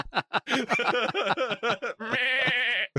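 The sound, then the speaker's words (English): A human voice imitates a goat bleating: a run of short, wavering, nasal bleats followed by one long, quavering bleat, loud. “Chemical, goat.”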